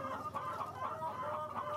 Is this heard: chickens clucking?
yes